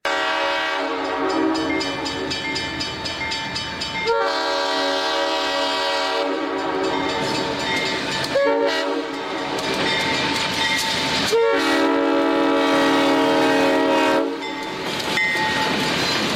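A train horn blares in long, loud sustained blasts, repeating several times with brief breaks between, over a steady rumbling of a passing train. No one speaks.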